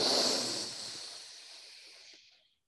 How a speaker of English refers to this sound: I'm going to breathe in quickly. Hold it for a count of five. And let it out slowly.